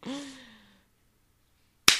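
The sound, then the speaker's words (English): A single sharp, bright hand clap lands at the very end, preceded by a soft, drawn-out vocal sound that trails off into a brief silence. “That was a great clap.”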